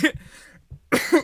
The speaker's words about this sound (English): Oh, sorry. It's just, I cough when I get inauthentic.